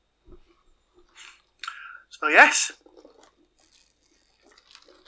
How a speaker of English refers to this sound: sorry, that was probably a terrible time to take a sip.